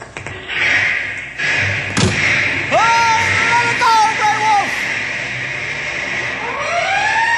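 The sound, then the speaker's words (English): A fire engine's cab door thuds shut with a single solid slam, followed by wavering, siren-like tones over a steady rumbling background. “I'll get the cab door open.”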